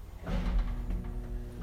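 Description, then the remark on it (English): A sliding door rumbles as it tries to close but will not, because someone is standing in its safety zone. It gives a steady low mechanical hum and grinding lasting under two seconds, fairly quiet, with no voices. “You might have to do the door close.”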